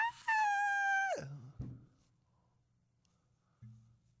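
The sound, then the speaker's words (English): A person imitates a cheerleader's scream: a shrill, sustained high-pitched cry held for about a second, then abruptly dropping into a low grunt, followed by quiet and a brief low murmur. “Is that how cheerleaders scream to you?”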